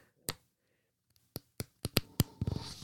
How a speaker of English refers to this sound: Printed out a big old stack of paper for research purposes. Listen carefully.